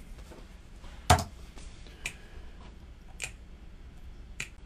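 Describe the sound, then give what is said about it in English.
Finger snaps recorded straight into a microphone as an instrument track of a song, very live sounding, played alone: one loud, sharp snap at the start, then several softer, crisp snaps spaced about a second apart over a faint hiss. “It literally sounds like they've just finger snapped into a mic.”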